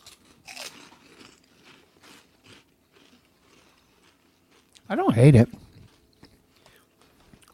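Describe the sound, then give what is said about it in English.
Crisp crunching of flaming hot Baconettes fried pork skins (chicharrones) runs through the first few seconds in sharp, irregular bites, then a voice speaks briefly with a rising, wavering tone before the chewing fades. “These are flaming hot fucking pork skin.”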